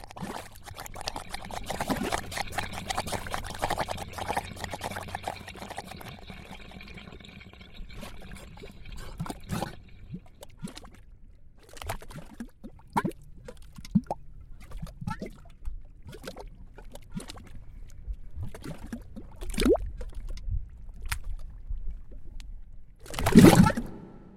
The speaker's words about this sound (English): These are mud pots. They're little geothermal pools that spit out watery mud.